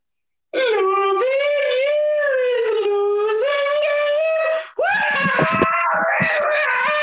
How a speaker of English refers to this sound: Why are you yelling?